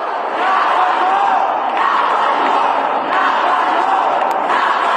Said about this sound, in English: specifically to support the crowd who had gathered outside, and the crowd was calling for gun reform. And I think that they felt that moving on with the regular House calendar was being disrespectful or ignoring the cries and the calls of the crowd.